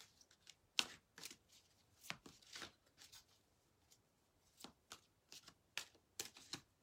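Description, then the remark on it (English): Cards being shuffled, a series of crisp riffling and slapping bursts in an irregular rhythm, fairly quiet with no talking. “So let's go ahead and give us a shuffle and pull our first card.”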